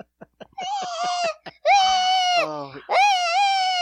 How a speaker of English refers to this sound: Before we start, which baby has been screaming? Oh, can you hear a screaming baby?